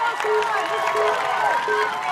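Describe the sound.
A dense, steady roar of crowd noise with many overlapping voices shouting and cheering, loud and continuous throughout the short stretch, like spectators at a live event.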